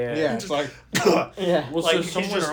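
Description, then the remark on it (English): A voice mimics a muffled cough into a hand, a short burst followed by a gruff throat-clearing rasp, amid ongoing talk. “He was coughing, and he always coughs just right, like, through his hand.”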